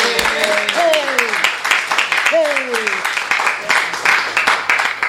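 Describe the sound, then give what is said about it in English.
A crowd at a bookstore claps steadily and densely throughout, lively, welcoming an author, with a couple of sliding vocal whoops or cheers rising out of the applause. “let's please give a warm round of applause to Robert S. Levinson”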